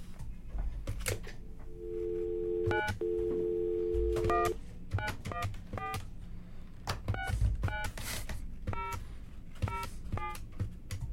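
A steady dial tone hums for a few seconds, then a quick series of short telephone keypad beeps punches in a number on a cheap phone, with clicks and handling noise in the background. No one speaks.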